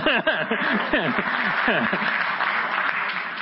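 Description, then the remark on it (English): A church crowd breaks into steady, loud applause for Jesus, dense clapping mixed with scattered whoops and cheering voices that rise and fall, then settling into an even patter of clapping. “And whether you clapped or whether you went, yes, in your heart, I don't mind.”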